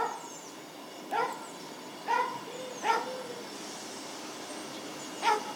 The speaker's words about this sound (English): Well, the Dog seems to recognise something's happening.